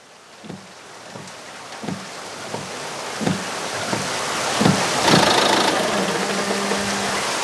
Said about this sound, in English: I'll start my old Ford and be over as fast as it can coast there. It's mostly downhill.